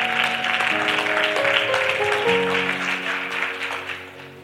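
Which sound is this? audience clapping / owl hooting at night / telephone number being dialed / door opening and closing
audience clapping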